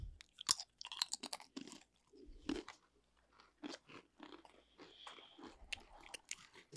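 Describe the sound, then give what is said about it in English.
Crunching and chewing of a dry cracker: repeated sharp, crackly bites followed by softer irregular mastication, fairly quiet, with no talking. “Let's do this cracker.”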